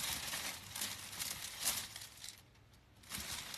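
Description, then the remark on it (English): Continuous crinkling and rustling of foil wrapping paper being handled and folded while wrapping a Christmas gift, crisp and bright, with a brief lull near the end before the crackling resumes. “Wraps holiday Gifts Live”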